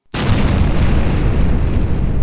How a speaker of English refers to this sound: The ground shook. I covered my ears to diminish the roar of weaponized nuclear fission, and then the column dissipated, fading back into the bruised purple twilight.